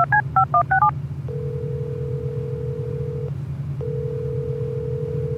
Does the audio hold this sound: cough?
no